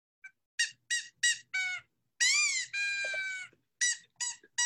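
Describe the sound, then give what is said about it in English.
A man's hoarse, strained scream, his vocal cords strained from three hours of screaming, broken into high, squeaky bursts: four short cries, two longer drawn-out wails, then three more quick squeals, with no talking. “And at the end of the 3 hours, he couldn't really keep screaming because that, you know, puts a lot of pressure on your vocal cords. And so supposedly, from all of the straining, he sounded like this.”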